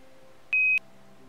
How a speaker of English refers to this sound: a radio on board, and it transmits a signal down to Earth every 15 seconds. That signal is very short and it's computer data rather than music or voices, but if we turn it into something we can hear, it sounds like a little break in the radio static.